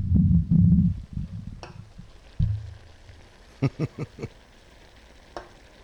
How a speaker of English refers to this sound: Meanwhile, we've got 3 pounds of bacon working at once. Let's see if we can hear it.